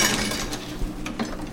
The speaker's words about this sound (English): I'm working on our 1916 Golding Jobber. It's a platen press, came out of Boston. All these machines are cast iron, so they're really heavy equipment.